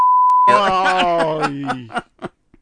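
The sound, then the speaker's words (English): A steady, pure censor bleep tone sounds for about half a second, then cuts straight into someone's drawn-out, snickering laughter that fades with a few short breaths. “I definitely better beep that out.”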